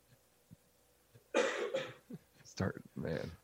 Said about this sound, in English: I don't want to laugh, but yeah, as soon as I start laughing, I cough.